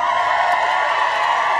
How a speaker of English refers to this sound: Let's give some applause for that.